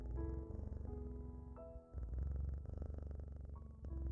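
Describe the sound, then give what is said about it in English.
A cat purrs steadily, a low rumbling drone that swells and eases with each breath, with a brief dip in the middle before resuming. “Notice how the sound of the purr is constantly changing in volume and texture, yet still comforting and familiar.”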